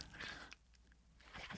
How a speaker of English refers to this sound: He's got to chew on the way out. He can't leave without chewing. Well, I'm already late now. I know. Just chew real quick.